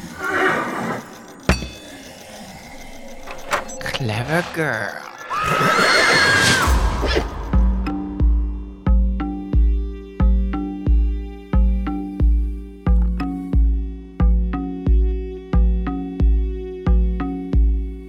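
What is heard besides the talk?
horse whinnying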